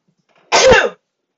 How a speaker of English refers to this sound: I feel like I gotta sneeze.